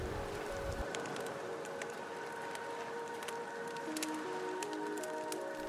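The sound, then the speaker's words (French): A wood fire crackles with scattered sharp pops over a steady, rushing wash of ocean waves, the fire burning by the sea, the mix holding an even, moderate level throughout with no voices. “Le bruit des crépitements s'entremêle à celui des vagues et vous apporte un sentiment de sérénité.”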